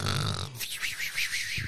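A female dog snoring in a corner: a short rough, breathy rasp, then a thin whistling wheeze that wavers up and down in quick regular pulses. No one speaks.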